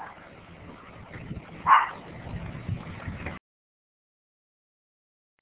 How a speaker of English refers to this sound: I know my dog is barking, I apologize.